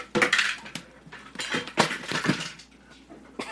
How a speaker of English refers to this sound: I thought that glass was going to shatter.